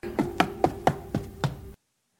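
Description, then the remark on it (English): Footsteps on stairs: six firm, hollow thuds at a steady walking pace over a faint steady hum, then sudden silence. “The first one is stairs.”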